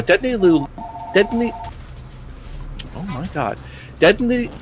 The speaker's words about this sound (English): Why the hell is his phone going off? Sorry, folks.